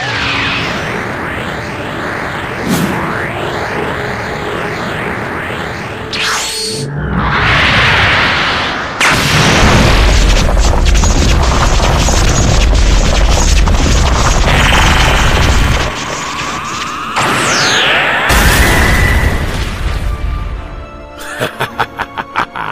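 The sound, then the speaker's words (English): A massive, sustained booming explosion of the planet Krypton being destroyed roars across the whole spectrum, with rumbling bursts and sweeping whooshes, loud, fading into crackling debris at the end. “It reminds me of the day I destroyed planet Krypton.”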